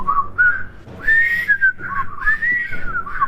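A person whistles a bright, jaunty tune up close, the melody moving in short phrases with brief pauses between them, heard clearly on its own with no talking.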